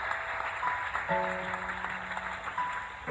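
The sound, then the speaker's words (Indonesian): An audience claps at a preacher's call during a Christian sermon, a steady, dense wash of applause, while sustained low keyboard notes hold underneath and shift partway through. “Beri tepuk tangan.”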